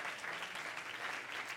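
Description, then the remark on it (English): A church audience claps their hands to the Lord, a dense, steady wash of many overlapping claps that holds at an even level throughout, with no voices standing out. “Everybody clap your hand to the Lord today.”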